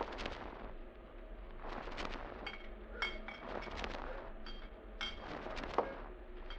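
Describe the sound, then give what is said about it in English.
A few light glass clinks ring out over a steady splashing pour of scotch whisky into a glass, fairly quiet, with no one talking. “Fred, I'm afraid I've only got one glass left that's been put in boiling water.”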